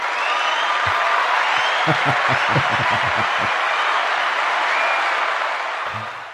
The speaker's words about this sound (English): Full-on applause from our studio audience there.